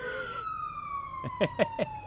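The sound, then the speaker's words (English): An ambulance siren sounds steadily on a roadside in Victoria, its pitch sliding gradually lower as it passes by, prominent, with a few short bursts of other sound near the end. “Oh, it's an ambulance.”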